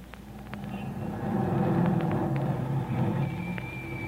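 A car engine rumbles steadily, a low droning motor sound that swells slightly and holds as the car pulls to a stop, with faint higher squeaks and clicks over it and no voices.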